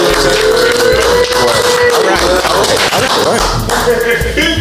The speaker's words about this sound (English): Can we get some applause? Can we get some applause?